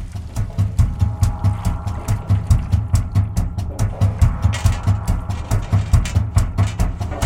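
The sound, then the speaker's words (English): Household washing machine sounds turned into music with some electronic effects: a steady, looping pulse of mechanical thumps over a deep, droning hum, with rattling clicks on top, played loud with no voices. “This is a washing machine, and it's been turned into music.”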